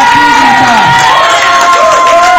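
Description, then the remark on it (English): A church audience cheers loudly and steadily, a dense wash of many voices with high whoops and shouts rising and falling over the roar. “Who we know can cheer in this place?”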